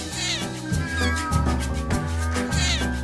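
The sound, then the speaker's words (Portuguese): A domestic cat meows repeatedly and loudly while pushing against the microphone, its cries rising and falling over a steady background of music, with no one speaking. “ele tá empurrando o meu microfone, sabe?”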